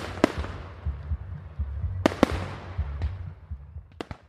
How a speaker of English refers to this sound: They bundled up in their mom's pickup truck and counted down together as midnight struck and the fireworks went off over the lake.